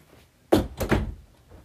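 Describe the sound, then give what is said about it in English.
A hidden door on a boat opens with a sudden solid thunk, followed by a short second burst of scraping movement that fades out. It sounds fairly loud, with no voices. “It's a hidden door. Let me check if she's inside the room.”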